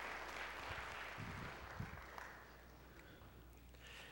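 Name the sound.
audience round of applause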